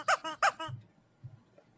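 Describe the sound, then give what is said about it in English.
A rubber chicken toy that comes with a board game set squeaks twice in quick succession, loud, high and harmonic with a nasal honk, followed by a couple of soft low squeezes of air as it deflates. “it comes with a rubber chicken.”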